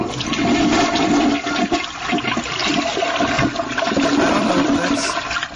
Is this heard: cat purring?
no